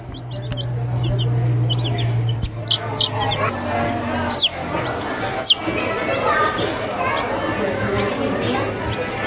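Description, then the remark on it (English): Little chicks chirp in quick, high-pitched peeps scattered throughout, fairly lively, at a farm days event in 2019, over a steady background murmur of people chattering and a low hum. “Way back in 2019, these little chirping chicks caught my ear at the Hilly Acres Sweet Farm Days event.”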